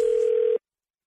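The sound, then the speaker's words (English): A steady telephone dial tone hums loudly and evenly for about half a second before a prank phone call, then cuts off abruptly into silence. “It's your phone tap right now. It's another phone tap.”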